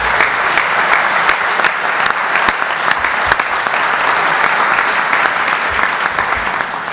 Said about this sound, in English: So I'd like you to give Spencer, our parliamentarian, a big round of applause.